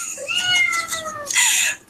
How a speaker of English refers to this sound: So long, if you can hear my cat in the background, just ignore him. I don't feel like saying this again. So if you hear him, that's fine.